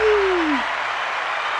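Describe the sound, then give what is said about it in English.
A canned applause sound effect: steady, dense clapping that fills the whole clip at a fairly loud level, opening with a brief low tone that slides downward. “We need a little like clap button on our, Wait for it.”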